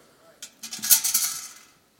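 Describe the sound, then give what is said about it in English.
A metal bucket with some water in it is picked up and handled, producing a quick series of bright clanks and rattling jingles that swell and then fade over about a second. “I got another bucket here.”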